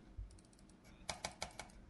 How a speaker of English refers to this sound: Thanks for clicking in the background.